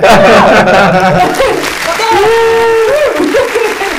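A dense burst of clapping and crowd noise fills the first half, then gives way to sustained, wavering vocal cheers and whoops over lighter applause, loud throughout.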